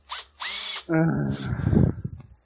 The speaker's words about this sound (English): It's actually a drill, but close enough. I mean, fine, put the drill away. I don't care. Put the power tool away.